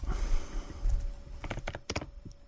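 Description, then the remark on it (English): A short burst of computer keyboard typing, several quick key clicks in an uneven rhythm, following a second or so of low background rumble. “He's on his computer. He's on his computer every week.”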